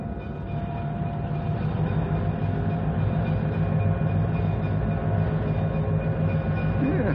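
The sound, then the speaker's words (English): An uncoupled locomotive is taken back to the yards, rolling steadily along the rails, its engine a loud, continuous low rumble with a droning hum and a faint rhythmic churn, unbroken for the whole stretch and with no voices. “Take the engine back to the yards.”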